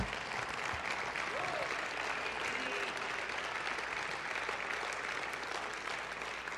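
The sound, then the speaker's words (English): A standing audience claps steadily together for the Lord, a dense, continuous wash of hand claps that stays loud and even throughout, with faint murmuring voices mixed underneath. “Stand to your feet and let's give the Lord a beyond imagination hand clap, shall we?”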